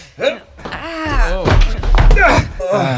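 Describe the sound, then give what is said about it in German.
A person throws their body hard against a locked door that will not open, giving a few dull, heavy thuds, mixed with strained grunts and exclamations. “Wartet, ich renn gegen die Tür.”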